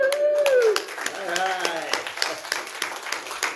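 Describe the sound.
A small group claps steadily while voices whoop and cheer excitedly, one high cheer rising at the start, all close and lively after a song ends.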